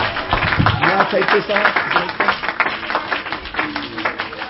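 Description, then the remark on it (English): A church audience claps together unto the Lord in a steady, dense patter that fills the whole stretch, with voices calling out and shouting over the hands. “One more time, would you clap your hands unto the Lord?”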